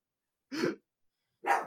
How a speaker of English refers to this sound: Can I help you, dude? Why are you barking? Why are you barking?